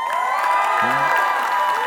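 A crowd applauds and cheers steadily for the announcement that the speaker's wife will turn 39, a dense wash of clapping with bright whoops and shouts rising above it, loud and sustained for the full couple of seconds.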